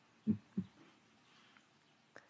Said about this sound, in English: I downloaded a normal, healthy heartbeat and would listen to the sound of a heartbeat and visualize my heart beating